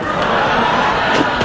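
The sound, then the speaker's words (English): Comedian Gallagher's Sledge-O-Matic, a sledgehammer, smashes a watermelon with a few sharp, wet thuds, buried in a loud, continuous roar of crowd cheering and shouting. “It is Sledge-O-Matic! Hey! Nice and bad, quick and easy, applesauce in an instant. But can he do it with a watermelon?”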